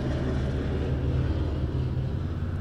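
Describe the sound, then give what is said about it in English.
A steady, droning rumble of an airplane passing overhead, with a low engine hum and broad roar holding at an even level throughout, no voices present. “there's a plane overhead.”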